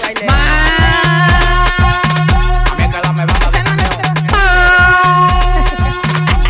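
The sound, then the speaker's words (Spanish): A loud truck air horn blares twice, each blast lasting about a second, layered over a pounding electronic dance beat with heavy bass kicks and repeating synth notes. “Esa bocina de patana no falla.”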